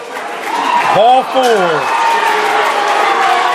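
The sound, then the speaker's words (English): Pirates fans at a baseball game stand up and clap with two outs and a full count, a steady, dense wash of applause that holds at an even loudness, with one brief rising-then-falling yell cutting through early on. “As the Pirate fans stand up, start clapping.”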